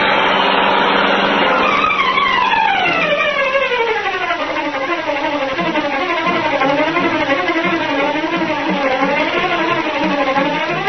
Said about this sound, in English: Once more, the powerful black car roared through the city streets, carrying the Green Hornet on his errand of justice.